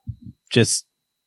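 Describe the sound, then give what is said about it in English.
A glass bottle of New Riff is knocked off a shelf: two quick, dull thuds, then a short, bright, ringing clatter, all over within about a second. “Sorry, I knocked a bottle of New Riff off the shelf.”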